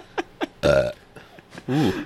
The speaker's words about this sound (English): Ooh. Ooh. A good one. What are you burping on?